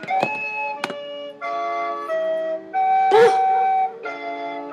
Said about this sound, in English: And we're going to roll out to a little bit of that hood music.